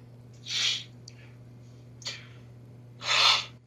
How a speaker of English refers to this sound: See, that's me. Breathing. That's me going, oh, and then it goes on, and I got a little louder.